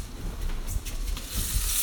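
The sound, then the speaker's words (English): Dinner with cheese in a pot boiling over on a stovetop: a steady sizzling hiss with scattered crackles and pops, growing a little brighter toward the end, with no voices. “Let me go make sure that my dinner is not boiling over in the...”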